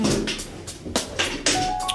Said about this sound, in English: Oh, I got the squeakiest chair.